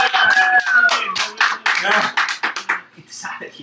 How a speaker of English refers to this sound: Can we get a live studio audience? Cheer. Hey, live studio audience. Bring it back.